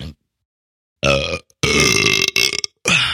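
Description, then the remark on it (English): A loud burp into a microphone, broken into several throaty, rumbling bursts with brief gaps between them, heard alone without any talking. “Besides burping into the mic?”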